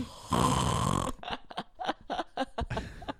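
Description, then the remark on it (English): A person imitates a loud, rasping snore for about a second, followed by short choppy breathy sounds or laughter-like bursts. “My favorite thing is like, oh yeah, closing your mouth makes you or helps you to stop snoring.”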